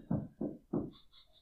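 Three loud, heavy knocks on a door in quick, even succession, each with a dull thud, followed by faint high-pitched sounds as the knocking stops.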